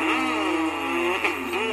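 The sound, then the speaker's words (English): A race car engine revs loudly and steadily, its pitch rising and dipping in short surges for a couple of seconds, with no voices. “How about race car drivers?”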